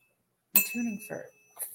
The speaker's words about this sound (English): Oh, let me ding my bell.